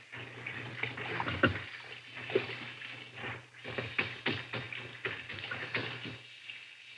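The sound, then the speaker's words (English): Hot water runs from a tap into a bathroom sink being cleaned, a steady splashing rush with some clinks and sloshes mixed in, moderately loud, with no talking. “There's the sink. Some hot water.”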